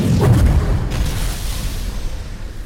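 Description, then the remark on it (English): A deep, booming blast with a rushing whoosh as a building explodes into an inferno. It is strongest at the start and then settles into a low, rumbling roar that lingers. No voices are heard. “There's a whoosh. And heat washes over me.”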